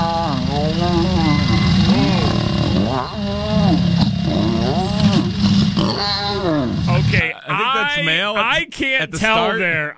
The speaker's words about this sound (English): I can't tell whether that's male, the male lion making the noise or the female lion making the noise, or maybe a combination of both. I don't know. I think it's both because I think it's the male at the start.